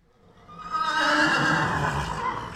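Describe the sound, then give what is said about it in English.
A horse, a mare borrowed from the Dutch farmer Hans van Ripper, lets out a loud, drawn-out whinny that swells after a brief quiet start and holds for a couple of seconds, with no voices. “He borrowed a horse from the farmer with whom he was domiciliated.”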